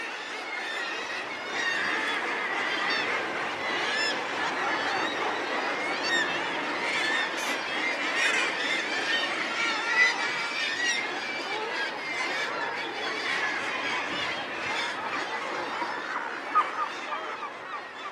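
A dense, unbroken cacophony of about 100,000 seabirds nesting on cliffs, calling at once from the crowded colony, shrill squeals and cackles overlapping steadily and loudly for the whole stretch, with no voices.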